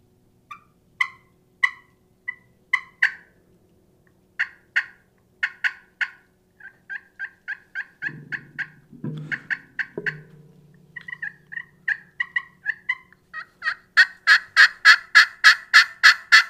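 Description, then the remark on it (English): Turkey yelps scratched on a Pecker Wrecker glass pot call: short, high raspy notes in uneven runs, speeding into a fast, loud series of yelps at the end. No talking. “If I'm gonna use one, it's gonna be Pecker Wrecker glass.”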